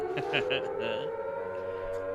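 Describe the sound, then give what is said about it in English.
A siren wails steadily outside, a loud sustained tone holding a fairly even pitch across the whole stretch, with faint voices briefly underneath at the start. “We hear one hell of a siren.”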